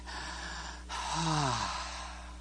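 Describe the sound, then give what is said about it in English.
A single deep breath: a breathy inhale, then a louder exhale that turns into a short voiced sigh falling in pitch. No one speaks. “Room to breathe, that times of refreshing might come from the presence of the Lord and bring me back to what? Normal breathing.”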